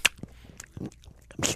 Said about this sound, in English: That's me chewing the gum, by the way.